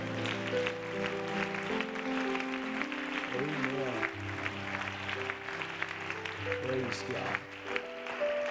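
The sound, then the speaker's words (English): An audience at a conference claps hands to the King of Glory in a dense, continuous patter that lasts the whole clip, over sustained keyboard chords and voices singing or calling out. “Why don't we clap our hands to the King of Glory?”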